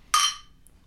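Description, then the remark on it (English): A single bright clink of glasses touching in a toast, ringing briefly before fading into quiet, with no voices over it. “But cheers. Here, here.”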